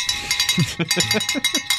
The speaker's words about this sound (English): You want to ring that bell?